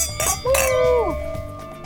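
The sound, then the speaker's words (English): A couple of bright glass clinks, their ringing tones lingering and fading over a low background murmur, as everyone toasts at the close of the TV show Check Please Bay Area. “Cheers, everyone. Cheers. Cheers.”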